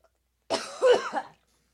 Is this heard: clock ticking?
no